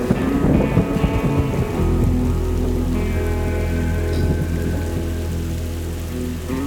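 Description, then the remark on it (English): Steady rain falls at night, pattering densely and loudly on a hard surface, with a low continuous rumble of thunder underneath and no voices. “That night, the rain clouds came through, and finally, some rain fell.”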